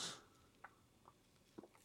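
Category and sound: food or drink, sip of beer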